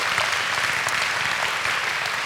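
An audience at Community Life Church applauds steadily on a Sunday morning, a dense wash of many hands clapping at once, sustained and fairly loud with no pauses, filling the room evenly from start to finish.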